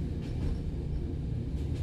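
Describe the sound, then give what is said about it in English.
A train rumbles steadily along the tracks as it ascends a mountain at sunset, a continuous low, heavy roll with faint rhythmic clatter and soft hissy bursts above it, with no voices present. “The forest gradually gives way to a breathtaking vista as the train ascends a mountain at sunset.”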